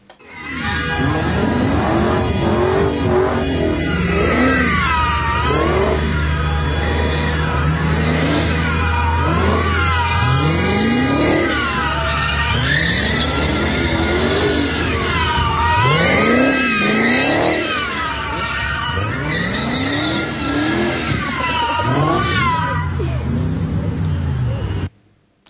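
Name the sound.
car revving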